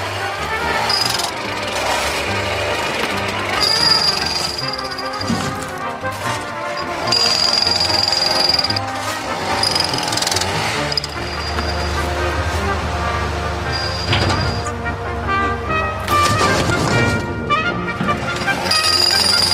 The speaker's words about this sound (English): Ooh, a sort of motorbike crossed with a pneumatic drill.